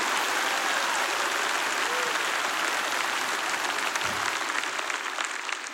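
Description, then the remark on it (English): Sustained applause from a large group, a dense, steady wash of clapping hands that stays loud and even for several seconds with no voices standing out. “I need somebody to clap your hands like you believe the promise today.”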